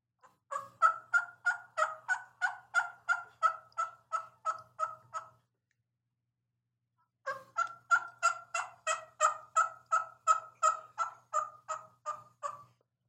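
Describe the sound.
A Bobby Cole reed call imitates a wild turkey gobble in two long bursts separated by a brief pause: each is a rapid, rattling string of loud, throaty notes that fades slightly toward the end.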